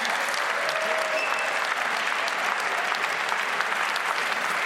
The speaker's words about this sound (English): And first up, it is really my great honour to introduce the legendary writer and comedian, Stuart Lee. He is going to introduce to us Jarrett Kobeck, so please give Stuart Lee a massive round of applause.